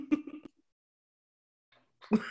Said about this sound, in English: Thirsty, huh? that was a water cough, not a COVID cough.